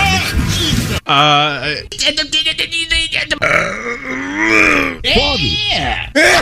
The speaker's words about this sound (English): He just has the weirdest little squeaks that come out of him.